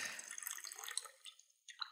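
Water pours steadily from a massive water bottle, a bright gurgling splash that trickles and drips, then surges again briefly near the end. Fairly loud, with no voices.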